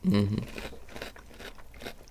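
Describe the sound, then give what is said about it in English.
Crunching and chewing of a full spoonful of apple- and cinnamon-flavoured oat cereal, with a brief vocal hum at the start followed by repeated soft, irregular crunches. “has gone for a bit of a munch there. Just a full-on spoonful.”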